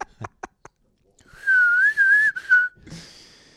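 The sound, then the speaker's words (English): A few quick taps, then someone whistles a short, bouncy tune, the melody wavering up and down for about a second before trailing off. “The mayor's coming in like fucking Mary Poppins, whistling away bloodstains.”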